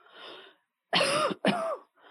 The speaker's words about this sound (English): I mean, try it. Cough.